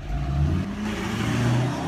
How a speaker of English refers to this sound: He drives off really fast in the truck.